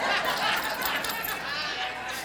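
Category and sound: household object, keys jangling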